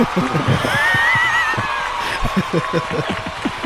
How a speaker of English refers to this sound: Is that just a sound effect or is that actual applause? That's actual applause. No, that's a sound effect. It's a sound effect, man, but you deserve every bit of it, yes.